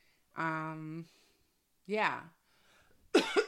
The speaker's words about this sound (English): I did cough, but I have a little cough today, so I think I can't edit it out. And so I'll take sips of water here and there.